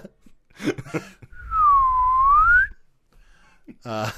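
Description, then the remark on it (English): A voice imitates a slide whistle with one loud, smooth tone that swoops down and glides back up over about a second, bracketed by brief bits of speech before and after. “You are the human equivalent of a slide whistle.”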